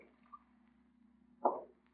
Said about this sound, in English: What's the water faucet running for? I'm washing my hands. Never knew you to do that before. I thought you washed up at the factory. Can't a man wash his hands when they need it?